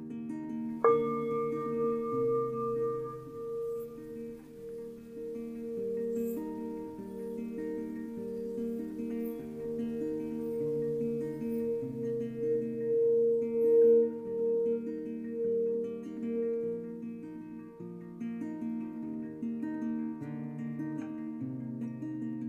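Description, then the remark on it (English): A Tibetan singing bowl is struck once, then, with the velvet side of a stick circled around its outside, hums in a long, steady drone of layered ringing tones that swell and waver gently throughout, fairly loud, with no voices. “and as she is told, the bowl begins to make this amazing, long, humming sound.”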